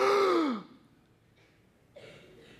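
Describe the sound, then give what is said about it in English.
A single loud gasp from a person, voiced and falling in pitch as it fades. It is followed by near silence, then a soft breathy sound near the end. “Gasp with me.”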